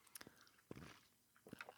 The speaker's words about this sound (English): Hold on, let me take a drink of water real fast.